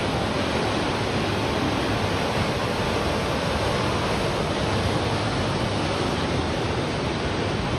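Rough ocean waves churn around a small boat, tossing it to and fro, in a constant, loud, rushing wash of water with no pauses or voices, like heavy surf.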